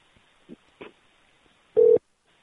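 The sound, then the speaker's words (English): A telephone line tone sounds once on a call to a woman's phone, a short, loud, steady beep heard over the call connection, preceded by a couple of faint clicks and line noise, with no talking. “I mean, that's her phone.”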